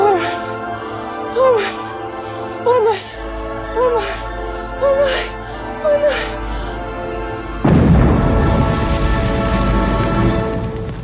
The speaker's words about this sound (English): And in the final moment, you hear an explosion and see the tree outside her window burst into flames.